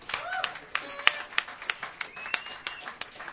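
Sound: audience applause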